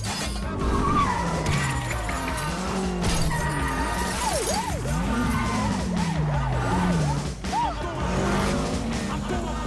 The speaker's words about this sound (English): that means that the police sirens are just sounding crazy. They're working musically with that piece of music. They just sound ridiculous.